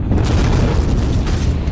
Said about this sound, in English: This caused an absolutely vast explosion, creating a 30-mile-high fountain of magma, dust, and ash.